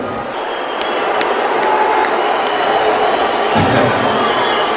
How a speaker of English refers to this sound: Cheers and boos, I see. So what I find interesting about this is, for one, Dave Chappelle insulted his own audience by saying the people that were booing had like the cheap seats and weren't prepared.